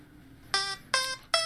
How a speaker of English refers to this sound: So the timer was going to go off and didn't want to say any more. That's what happened there.